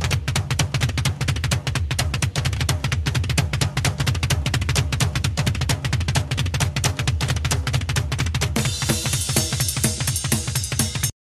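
Rapid rock drumming: a loud, relentless stream of fast, even kick-drum thuds and snappy hits, with a bright cymbal wash joining in toward the end. No voices.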